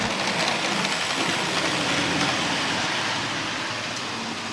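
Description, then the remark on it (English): A 1:64-scale model train runs through a model of the central station of Omaha, Nebraska, in the historic city center of Nuremberg, Germany: a steady, fairly loud whirring rumble with light rhythmic clicks running throughout and no voices. “This is a train driving through the central station of Omaha, Nebraska.”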